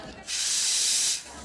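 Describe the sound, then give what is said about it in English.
A steady, loud hiss of an espresso machine's steam wand frothing milk at the Java Cats cat café, lasting about a second with a sharp start and a quick fade. “And then once it's at a blood temperature, you dunk it to where it's nice and silent and you're just heating the milk to that perfect temperature.”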